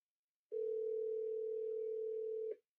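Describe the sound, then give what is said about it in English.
A single steady ringback tone from a phone line on an outgoing speakerphone call, a smooth unbroken hum lasting about two seconds before cutting off, fairly loud and heard on its own with no talking. “Hear the ringing?”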